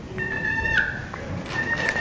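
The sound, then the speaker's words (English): A turkey call purring: a steady, high, rolling trill with bright overtones that fades briefly just past one second, then picks back up, with no voices. “And then purr with it. Hold it, let it naturally do it.”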